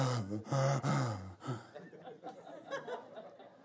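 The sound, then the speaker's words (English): A man's voice imitates heavy breathing, starting with a few loud, voiced, gasping exhales and trailing off into softer, airy panting breaths. “It doesn't give the implication of a man standing there beat up, dented, dirty armor, just breathing heavy.”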